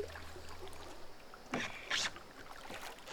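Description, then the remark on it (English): A small boat being paddled and steered by a woman on water, with a steady wash of lapping and a couple of brief splashy surges as it is paddled or turned, fairly quiet. “See if you can still steer one of these, huh? A little big for one girl, but not too bad.”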